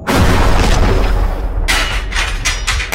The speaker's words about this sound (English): So, obviously, like, the explosion, such the impact, cool, and then all of the pieces falling onto the floor, right?